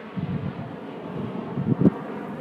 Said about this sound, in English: It's found in a polar desert, so it's a very desolate, very quiet place. All you hear is the wind and nothing else.